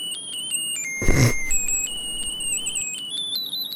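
A broken musical Christmas card plays a medley of carols, including Jingle Bells and We Wish You a Merry Christmas, as a thin, tinny electronic melody of high beeping notes that step up and down in pitch, interrupted early by a brief burst of rustling noise.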